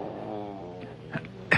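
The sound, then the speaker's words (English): A cat gives a single drawn-out meow, then a couple of short, breathy rustling bursts follow, with no one talking. “Hey, you're very fine, cat, and very smart.”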